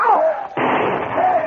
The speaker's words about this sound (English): the flaming cabin exploded as the blaze overheated a drum of coal oil inside. Flames are spreading. There'll be a forest fire.